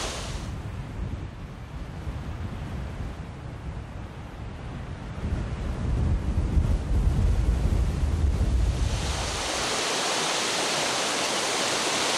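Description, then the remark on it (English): Steady rushing of flowing stream water moving sediment grains, loud, with a rough, churning low rumble that swells midway before giving way to a thinner, even hiss near the end. No voices. “We've seen grains being moved by wind down at the beach. We've seen them being moved here by water.”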